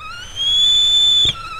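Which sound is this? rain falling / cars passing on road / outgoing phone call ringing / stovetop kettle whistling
stovetop kettle whistling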